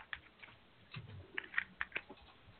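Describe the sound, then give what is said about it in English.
A deck of cards being shuffled for a card reading, heard as a handful of soft, irregular clicks and snaps spread over a couple of seconds, quiet, with no one talking. “And we're just going to go ahead and just begin to shuffle.”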